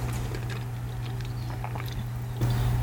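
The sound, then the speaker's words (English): Soft chewing of scone dough, irregular wet mouth clicks and smacks over a steady low electrical hum, with no talking. “Oh, this dough is really good. I'm chewing on it right now”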